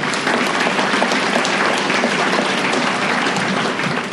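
A room full of people claps steadily, a dense, even wash of applause that holds at a strong level for several seconds without pause.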